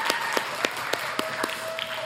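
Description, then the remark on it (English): An audience applauds all moms on Mother's Day, many hands clapping in a dense, steady patter with a few sharper claps standing out at a regular pace, with no voices. “Let's give a round of applause to all moms here.”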